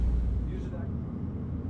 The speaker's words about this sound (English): Still in the car, on my way home to Laramie, I think about payoff.